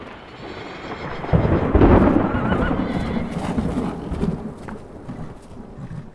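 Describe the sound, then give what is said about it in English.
A heavy roll of thunder booms up loud about a second in and rumbles on over the steady hiss of torrential rain, with a horse whinnying briefly amid the thunderstorm. “walked to his horse, and rode swiftly out of town in the torrential rain, with thunder and lightning flashing and booming all around him.”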